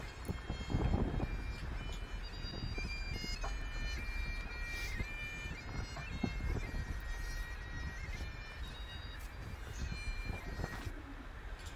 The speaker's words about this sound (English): And then at the top of Cat Bells, it's a bit windy. Are they able to hear the bagpipes? Hopefully, yes. I can hear the bagpipes.